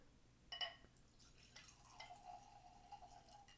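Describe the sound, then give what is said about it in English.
A quick glassy clink, then wine pouring steadily from a bottle into a glass, a soft continuous gurgle whose pitch creeps upward as it fills. Quiet, with no voices. “All right, let's pour up, Hideo Kojima.”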